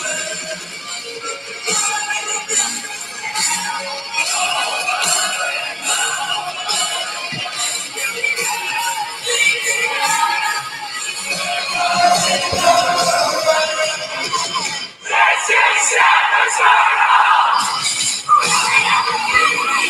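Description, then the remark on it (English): A huge concert crowd roars loudly and continuously for the whole stretch, a dense wall of cheering and screaming that swells even stronger near the end, with no clear talking. “just listen to the crowd when they say this is …”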